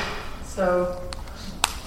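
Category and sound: household object, knocking on a door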